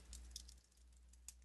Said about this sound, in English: stop typing and listen!